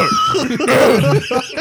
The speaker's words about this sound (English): So I was sneezing like this.